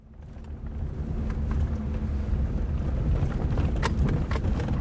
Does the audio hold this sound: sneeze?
no